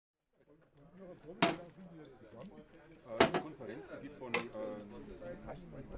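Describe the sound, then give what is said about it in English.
Three sharp metallic clanks from the small metal compartment door of a street vendor's portable sausage warmer in Germany being opened and shut, fairly loud, spaced a second or two apart, with people talking underneath throughout. “These vendors offer sausages cooked and kept warm using portable cooking devices, which make distinctive sounds when their metal compartment doors are opened and closed.”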